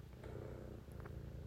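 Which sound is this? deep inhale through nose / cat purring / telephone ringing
cat purring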